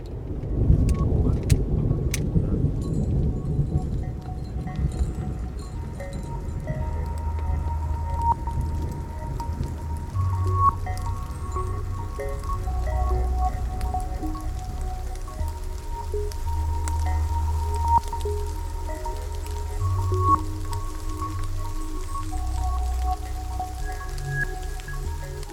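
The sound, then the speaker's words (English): A thunderstorm in the mountains: steady rain falls with a deep, rolling rumble of thunder underneath, a few sharp cracks near the start and heavy drops pattering; no one speaks. “The storm in the mountains is really the worst thing that can happen to you.”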